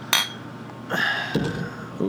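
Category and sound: household object, glasses clinking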